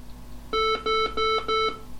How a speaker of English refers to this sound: After switch on, the server emitted four beeps to signal that the server was fully up, with a detached screen session running, ready for remote login.